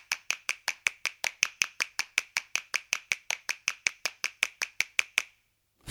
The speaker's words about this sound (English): And last week you requested a version with hand claps, and you got your hand claps, courtesy of